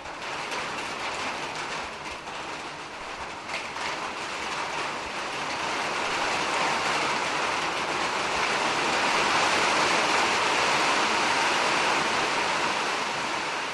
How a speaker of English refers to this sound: This request comes from Carlos at Hill Correctional Center. Carlos was born in Puerto Rico and wanted to hear the sound of rain falling on a metal roof because it reminds Carlos of home.